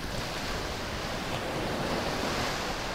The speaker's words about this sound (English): Far below, the waves crash onto a narrow beach.